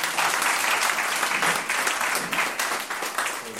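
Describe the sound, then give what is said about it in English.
A gathering applauds itself for turning out on a very cold morning. It is a steady, dense wash of many hands clapping at a fairly loud, even level throughout, with no voices rising above it. “I think you need to give yourself a round of applause.”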